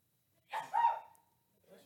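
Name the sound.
sneeze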